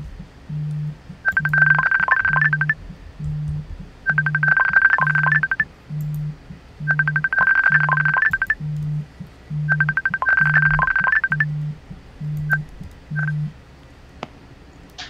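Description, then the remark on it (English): A phone rings four times for an incoming call in a steady rhythm, each bright, trilling burst lasting about a second, over a low pulsing beat. The ringing is clear, with no voices. “Oh, hey, we're getting a phone call here.”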